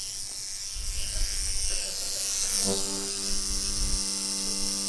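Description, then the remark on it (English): An electric toothbrush, brought into a church, switches on partway through and keeps up a steady, droning buzz to the end, over a low background rumble. “This is my toothbrush.”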